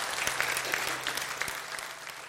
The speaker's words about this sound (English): Church, let's give a round of applause for those who've made that decision this morning. We celebrate you guys.